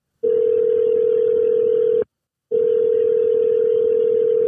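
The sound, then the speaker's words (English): Two long, steady electronic phone tones sound one after another with a short gap of silence between them, ringing on the line as an outgoing phone call is placed, loud with no voices. “You know what? I'm gonna make a phone call. I'm gonna get Jake on the line.”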